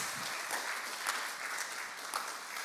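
An audience at Redemption Newmarket applauds steadily after a prayer, a dense wash of many hands clapping at an even level throughout, with a few sharper claps poking out now and then and no talking over it.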